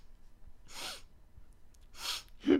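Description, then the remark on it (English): A voice mimics tearful sniffling: two sharp, breathy inhalations through the nose, then a short choked, voiced catch at the end, close and quiet, with no talking. “You just start hearing them sniffling back and forth, just.”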